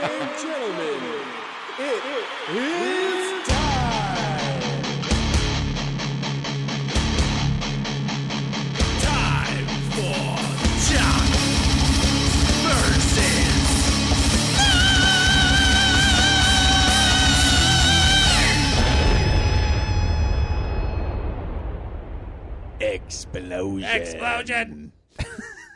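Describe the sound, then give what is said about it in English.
A short burst of people's voices gives way to a loud, busy theme tune with a pulsing bass beat and layered melody, which runs for about fifteen seconds before fading into scattered noise. “Are you just going into it without playing the theme song?”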